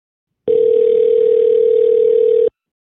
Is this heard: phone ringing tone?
yes